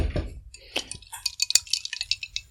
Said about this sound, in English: Okay, I'm just getting my ice. I'll have a bit more.